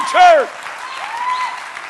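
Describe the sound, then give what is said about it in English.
A church audience claps hands in a steady, dense wash of applause, with a loud rising shout at the start and softer voices calling out over the clapping, as they are urged to clap and say they are glad to be there tonight. “Come on, clap your hands and say, I'm glad I'm here tonight.”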